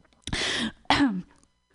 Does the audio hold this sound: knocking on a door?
no